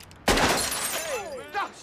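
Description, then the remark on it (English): A windshield smashes in one sudden, loud crash of shattering glass. The crunchy hiss tails off as a person cries out in a strained, wavering voice over it. “It's my windshield, you crazy mother...”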